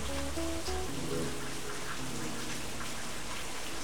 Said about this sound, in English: it's fucking pouring in South Florida, real quick. We said that at the start of the show podcast, and it's still raining. It's raining all day.